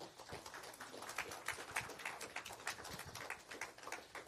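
A crowd claps steadily and fairly loudly, with dense overlapping hand claps holding at an even level for a few seconds and no one speaking over it.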